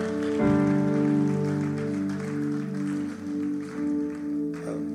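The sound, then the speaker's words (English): An audience applauds steadily, a dense, continuous patter of many hands clapping together, underneath sustained keyboard or organ chords that hold throughout. “Time you clap because I asked you to clap, but clap one more time from your hearts, thanking God for the many things He has done for us.”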